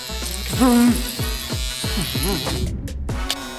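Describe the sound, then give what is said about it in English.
An electric hair trimmer, the Ballsy V2 trimmer, buzzes steadily for the whole stretch, a dense, bright whirring hum that dips briefly near the end, with voices and vocal sounds heard over it. “That's why we created the new V2 trimmer.”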